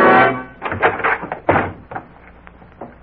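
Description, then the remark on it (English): FBI agents rush and force open a bedroom door with a sudden loud crash, followed by a quick series of heavy thuds and knocks that fade into quieter rattling, with no talking. “And then, in a quick movement, they rushed the door to Frank Hadley.”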